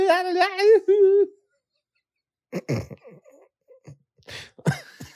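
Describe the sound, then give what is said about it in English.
A man coughs several times in rough, uneven bursts after a short pause, following a brief warbling vocal sound at the start. “I got to cough again now.”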